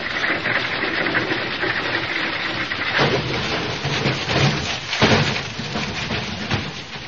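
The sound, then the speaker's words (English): A fortune-telling wagon, its brakes taken off, rumbles and rattles steadily as it is pushed and rolls downhill toward olive trees at the foot of the hill, with a couple of harder jolts and bangs along the way; loud and continuous, with no voices. “Someone's taking the brakes off and pushing us down the hill.”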